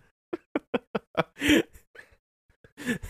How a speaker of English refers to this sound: I know damn well people will be able to hear him just shaking his shit around and smacking the wall with his tail. He was hitting the little crate too. The little tote.